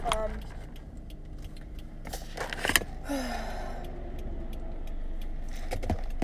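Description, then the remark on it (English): A car passes by, its whooshing road noise swelling over a couple of seconds and then fading, set against steady outdoor background noise with some light rattling. “Oop, that's a car.”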